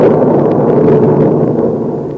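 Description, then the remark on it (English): A loud, sustained roll of thunder from an electric storm at White Oaks rumbles through the whole clip, deep and grainy with a crackling edge, holding steady before easing off slightly at the end. No voices are heard. “I got to White Oaks in an electric storm, where the skies give me a 21-gun salute.”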